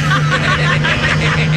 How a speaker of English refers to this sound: I wanted to allow that bus to drive by because it was right there. Yeah. There it is. There's the bus. Here it comes again.